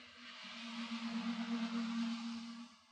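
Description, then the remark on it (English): A steady rush of road traffic with a low engine hum, swelling louder in the middle as a car passes, then easing off slightly, heard outdoors in light rain. No voices are heard. “Instead, all I hear is cars over there. Listen to that.”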